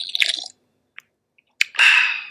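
A burst of fizzing, then a faint click and a sharp metallic crack as a can of Machu Picchu Energy Yerba Mate Ocean Citrus energy drink is opened, followed by a loud, sustained hiss of carbonation. No one speaks.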